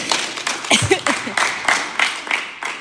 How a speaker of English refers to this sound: Si quieres aplaudir, aplaude para el Señor. If you want to clap, you can clap to the Lord, he says.